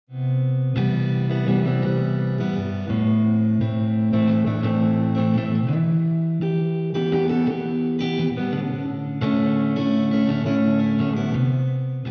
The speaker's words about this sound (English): reverb creates distance, as if the guitar is being played in a neighboring universe.